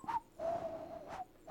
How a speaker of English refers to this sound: I'm going to whistle now. No one will notice.